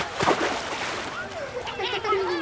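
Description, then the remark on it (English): A sudden splash as something heavy drops into water, as Mary Farfisa falls from the sky into a gentle ocean, followed by sloshing and gurgling with rising and falling tones for a couple of seconds. “the first thing Mary Farfisa realized was that she had fallen into an ocean. There was water all around her as far as she could see.”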